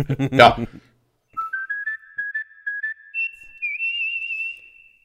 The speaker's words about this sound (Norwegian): Gjør et lite plyster, så jeg vet hvor jeg skal klippe.